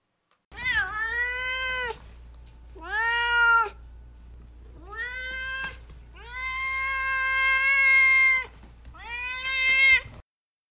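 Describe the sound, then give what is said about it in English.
A cat named Duarte meows five times in a row, long drawn-out cries with clear harmonic tones, loud, separated by short pauses. No one speaks over it. “He's the cat. And here he is.”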